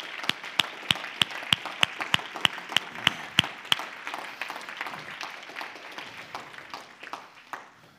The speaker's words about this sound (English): Why don't we clap our hands to the Lord and give Him some praise?